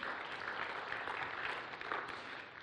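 An audience claps steadily, a dense wash of many hands at an even, fairly loud level that holds throughout without any voices on top.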